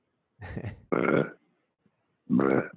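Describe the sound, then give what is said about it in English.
Three throaty burps: two back-to-back gurgling belches, then a short pause and a third, deeper one. No talking over them. “So I very quietly and politely was doing a burp, but a big one might be happening soon.”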